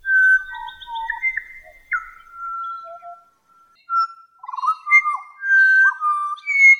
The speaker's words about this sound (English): She heard a pied butcher bird.